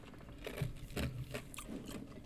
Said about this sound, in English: Excuse me, sorry, I'm chewing on ice right here.